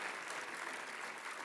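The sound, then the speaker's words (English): An audience claps their hands together, a dense, steady wash of many overlapping claps with no distinct rhythm, sustained evenly throughout and fairly soft in level, with no talking. “Come on, go ahead. Clap your hands.”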